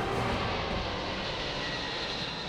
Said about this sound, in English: The large aircraft rumbled to life, and they accelerated forward. Faster and faster, the plane was picking up speed.